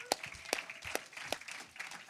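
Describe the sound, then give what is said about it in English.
Scattered audience applause at a church gathering after news that the community will be planted as an independent church: a few sharp, loud claps stand out at a slow, uneven pace over a steady crackle of lighter clapping. Faint murmuring voices sit beneath it. “See? Now you can clap.”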